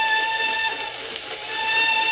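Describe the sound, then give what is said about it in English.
An old train whistle sounds at night, one long, steady, unbroken blast with a bright, layered chord, fairly loud and holding level throughout, with no voices and only faint rumble beneath. “I say, the old whistle do sound eerie tonight, don't she?”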